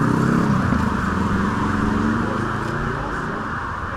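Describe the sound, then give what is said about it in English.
An ice cream van roars past at speed, its engine loud at first, then gradually easing off as it moves away, with steady road rumble throughout. “He's not going to sell many ice creams going at that speed.”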